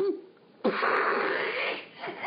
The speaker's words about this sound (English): What's the matter? My dog! What's he doing now? He's breathing! Stop breathing, Weezer! You annoying thing! How dare you breathe!